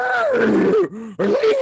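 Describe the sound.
A person imitates a cow's moo with a loud, drawn-out, low groaning voice that wavers in pitch, breaks briefly, then resumes for a second, shorter moo.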